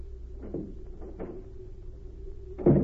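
A door creaks and clicks open with a couple of soft knocks, then shuts with a louder thump, all over a steady low hum with no voices.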